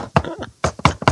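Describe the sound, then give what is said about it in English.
Several sharp knocks rap on a wall in an uneven pattern: one knock, a pause, then three more in quicker succession, each with a short hollow decay. Someone is searching for a hollow space or false bottom. “I'm looking for the false bottom everywhere I go. I'm knocking.”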